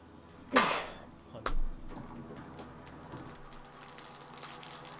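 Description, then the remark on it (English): A single sharp, loud sneeze bursts out near the start, followed by a brief low thump and quiet background rustling for the rest of the moment. “That's a surprisingly big sound wave for that sneeze.”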